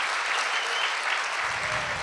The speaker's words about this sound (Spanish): Si alguien le va a aplaudir a Jesús, por favor que sea fuerte a Él. A ti, mi Rey.